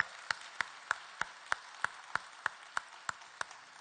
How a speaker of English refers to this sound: What an opportunity we have to celebrate the second most important day in the history of Christianity, and that is the resurrection of Jesus Christ. Can we give Jesus another round of applause this morning?